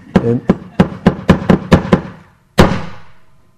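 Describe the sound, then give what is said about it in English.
A wooden han board is struck with a mallet to signal meditation, as it is every day, quickening as the door is about to shut: eight sharp, hollow knocks in a quick, steady run, a short pause, then one final louder blow that rings out and fades. No voices. “And what also impressed me about this piece of wood, the han, is it gets hit every day a number of times, you know, for meditation.”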